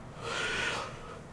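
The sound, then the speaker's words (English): A single breathy human yawn, a soft airy intake that swells and then fades over about a second, with no talking. “Why do you keep yawning and kicking stuff?”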